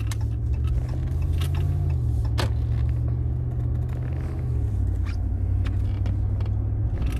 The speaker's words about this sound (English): Who the fuck is pulling out of Wendy's just after the new year?